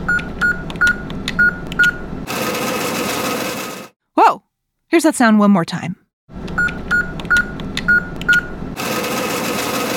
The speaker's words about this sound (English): an ATM is a machine that you use to get money that you've put away in a bank